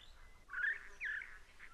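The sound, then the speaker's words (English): A lyrebird mimicking parrots: two harsh, rasping screeches in quick succession, mid-pitched and scratchy, over a soft background hiss with no talking. “That rapid-fire screeching sound. The lyrebird mimicking parrots.”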